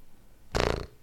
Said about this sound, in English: Farts? No.